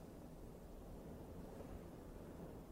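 A steady, even hiss of rain falling outside, soft and constant with no breaks, a low rumble beneath a wash of fine crackle. No voices.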